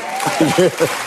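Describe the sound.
An audience applauds steadily, a dense wash of clapping, while a man's voice speaks briefly over it near the middle.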